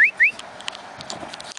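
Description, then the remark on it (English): Two quick, loud whistles, each sliding upward in pitch, calling a dog, followed by a faint, hissy background with scattered light clicks. “Hold on, let me call my dog.”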